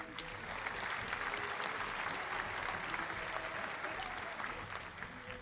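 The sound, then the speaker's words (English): A crowd applauds steadily for several seconds, a dense wash of clapping hands that stays at an even level throughout, with no one speaking over it. “Don't applaud him.”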